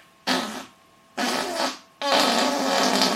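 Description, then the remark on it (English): Three loud raspberry-like fart noises made with the mouth, the first two short and the last one longer and sustained, with no talking. “But that's what it sounds like when you've got gas, or when you fart a lot.”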